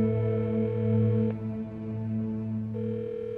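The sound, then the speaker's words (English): A steady, unbroken telephone dial tone from the phone call between Dan and Blair hums on its own at moderate volume, with a couple of faint clicks partway through and no voices. “From the phone call that Dan and Blair had.”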